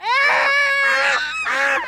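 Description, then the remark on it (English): A loud, nasal honking call, like a duck or goose, rises and falls in three strained, wailing bursts that run close together with no talking. “Now, that's when I had to remind her that when I sing, I sound like a combination of a duck and a screaming baby.”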